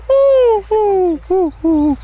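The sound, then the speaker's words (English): A person's voice imitates a wood pigeon's cooing call with four hooting coos, two long then two shorter, each sliding slightly downward. Loud, with no other sound around it. “Could the pigeon... Could it do an extra one? Could it go...”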